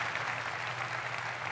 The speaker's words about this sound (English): Round of applause for the drumline, guys.